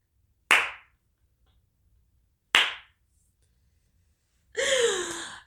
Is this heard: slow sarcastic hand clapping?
yes